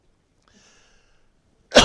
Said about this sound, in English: Turn the mic off before I cough.